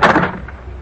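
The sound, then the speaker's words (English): A skull thuds onto wooden stairs: one loud, hollow knock that rings briefly and fades into a low rumble, with no voices. “The skull. How did it get down here? It came down the steps.”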